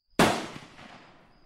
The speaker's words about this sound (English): It's okay. That was far away. That seems closer. We sat there motionless, listening to the gunfire.